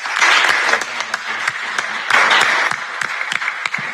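An audience breaks into sustained applause for a panel, a dense wash of many hands clapping at a steady loud level for the full few seconds, with sharper individual claps standing out.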